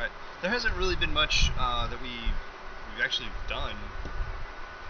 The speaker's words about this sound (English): They're in the cleanup process now, so you might hear a little hum in the background of the water machines flowing, pumping through the tubes.